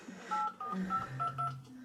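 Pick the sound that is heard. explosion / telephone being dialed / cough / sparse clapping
telephone being dialed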